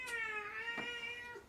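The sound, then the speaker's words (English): A single drawn-out cat meow, whiny and tonal, with its pitch sliding gradually across about a second and a half, with no talking over it. “No cat.”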